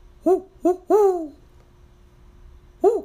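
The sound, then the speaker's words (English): A person imitates an owl with clear voiced hoots: two short ones, a longer drawn-out hoot that bends downward, then a pause before one final hoot. “Oh, you want me to do an owl sound? Why, all right.”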